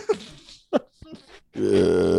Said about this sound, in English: What's going on? What's all the burping? We had lunch. Drinking a carbonated drink. It happens.